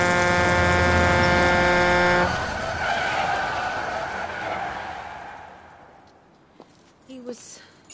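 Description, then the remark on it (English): A lorry skids on a motorway at night in pouring rain, its tyres letting out a loud, sustained screech for about two seconds before giving way to fading road noise and rumble. “By a lorry on a motorway at night.”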